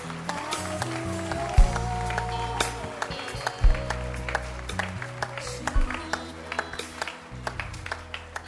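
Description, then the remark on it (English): A crowd claps along in a steady, overlapping rhythm over live music with a low bass line and sustained tones, the claps sharp throughout. “Clap your hands for him.”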